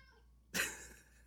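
A single short meow from a pet cat, abrupt and fairly loud, then fades quickly into quiet with no talking.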